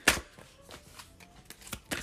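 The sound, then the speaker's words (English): A deck of guidance cards being shuffled: a string of crisp, papery flicks and slaps at an uneven, quick rhythm, fairly quiet, with a louder snap at the start and no talking. “One more. Okay, one more shuffle.”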